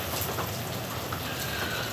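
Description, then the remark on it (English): Steady rain falls in the woods in chilly weather, a dense, even hiss of drops pattering on surfaces with no pauses, moderately loud, with no voices. “It's a bit chilly out with this beautiful rain.”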